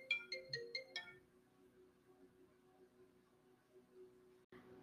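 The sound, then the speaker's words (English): A mobile phone ringtone chirps a quick run of bright electronic notes for about a second during a recording, then stops abruptly, leaving only a faint, steady low hum. “I really have to start remembering to silence my phone before I start these recordings”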